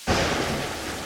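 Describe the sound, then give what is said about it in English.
A thunderstorm surges in abruptly, with a loud, dense wash of rain and a deep, rolling rumble of thunder underneath, sustained steadily throughout with no voices. “Thunderstorms.”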